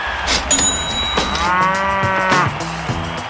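cow mooing

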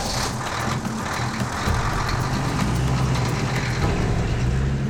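truck driving away

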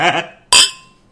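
glasses clinking

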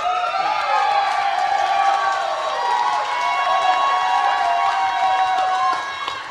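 audience clapping and cheering

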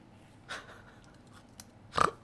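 crunching on potato chips

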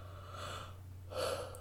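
yawn

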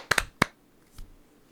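single hand clap

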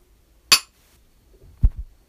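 glasses clinking

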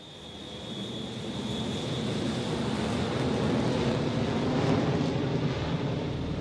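airplane flying overhead

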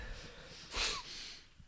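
sniffling nose

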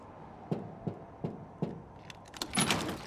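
keys jangling

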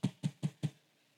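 knocking on a door

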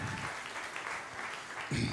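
audience applauding

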